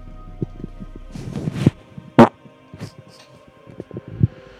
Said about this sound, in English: That's a fart. Yeah. We've upgraded from burps to farts.